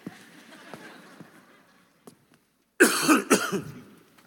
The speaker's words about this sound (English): Excuse me. I had this cough.